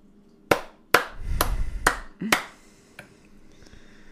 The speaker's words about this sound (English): I'm doing a real applause